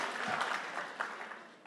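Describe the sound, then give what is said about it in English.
A crowd applauds after one person claps, with a dense, steady patter of many hands clapping, keeping a fairly even level, with no one speaking over it. “You know, the rule is if one person claps, everyone has to clap.”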